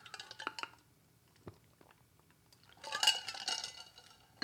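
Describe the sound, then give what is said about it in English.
A few light clinks of a glass, then a short stretch of sipping and swallowing as someone drinks water. No one speaks. “It's not my morning, so I've long since finished with coffee, so I gotta have a drink of water here.”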